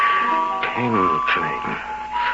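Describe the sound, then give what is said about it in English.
Soft tinkling of small bells on Fortunato's cap, a light, steady high ringing that lingers through the whole moment, with a voice murmuring beneath it. “Tinkling of the bells.”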